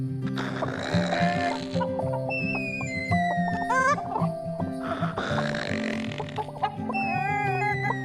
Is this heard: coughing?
no